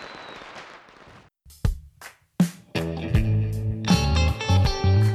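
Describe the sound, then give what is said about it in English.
A rushing hiss as a bottle rocket firework launches, followed by two sharp pops, then a burst of loud, dense sound takes over. No one speaks. “Put them in a bottle, shoot them up in the air.”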